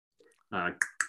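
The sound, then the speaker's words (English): A brief voiced vocal sound followed by two crisp tongue clicks in quick succession, a person imitating a bear's tongue clicking. “Tongue clicking, like I'm guessing tongue clucking is probably what they mean.”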